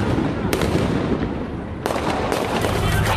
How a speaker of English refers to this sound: Shots fired. Two police officers were shot, one in the hip, the other in the stomach.